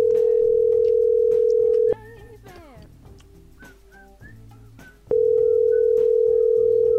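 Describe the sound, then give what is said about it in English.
A phone line ringing: a loud, steady electronic ring tone sounds for about two seconds, pauses for a few seconds while faint background noises come through, then rings again. “It's ringing for longer now.”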